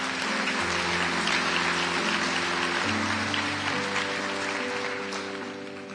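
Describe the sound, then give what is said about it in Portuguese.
A crowd applauds the Lord steadily, a dense wash of clapping that holds for several seconds before easing off slightly at the end, with a sustained organ-like chord playing underneath. “Aplauda o Senhor.”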